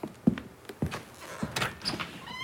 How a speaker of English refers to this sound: I'll answer the door on my way out.